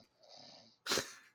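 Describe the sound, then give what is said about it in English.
A man snoring: a wheezy, drawn-out inhale followed by a rougher, louder snort-like breath, quiet with no talking. “I cannot talk at the same time as listening to him snore.”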